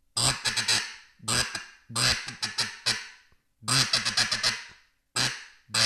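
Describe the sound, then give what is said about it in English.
A Primo's blue-winged teal duck call blown in quick, reedy toots, grouped in short bursts of several notes with brief pauses between, loud, with no talking. “and literally this is just a Primo's blue-wing teal call, and you don't have to be real precise with it, but just like a toot, toot, toot, toot is what I say into the call.”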